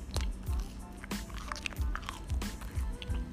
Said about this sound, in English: That's me chewing my French toast.